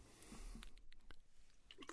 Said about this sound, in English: I'll just keep dropping the water on your wrists.